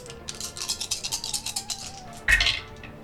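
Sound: many dice rolling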